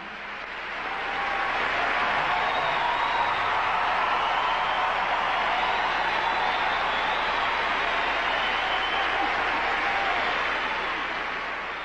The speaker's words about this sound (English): An overwhelmed Yoko Ono took the stage to thunderous applause. Ono put her hand to her chest and attempted to begin speaking a few times, only to be drowned out by the ongoing clapping of hands.